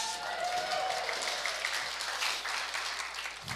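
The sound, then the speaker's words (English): A crowd applauds steadily throughout, a dense wash of clapping with a faint whoop or whistle rising early on; no speech, and the clapping stays evenly loud to the end. “So yeah, give her a cheer.”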